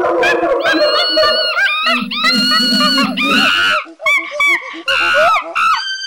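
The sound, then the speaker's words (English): A finished monkey sound-effect track about 3.5 seconds long, made of monkey recordings mixed and jumbled together and faded into the left and right speakers: shrill screeches and hoots overlapping in rapid, chattering bursts, loud throughout, with wavering high-pitched whoops and a low grunting layer underneath. “Which gives us a finished monkey track, as follows.”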